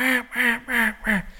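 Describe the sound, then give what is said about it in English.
Four loud, raspy, aggressive boss-hen quacks blown on a duck call in quick, even succession, harsh and insistent, with no talking. “You can, you know, do a loud boss hen, a real aggressive boss hen.”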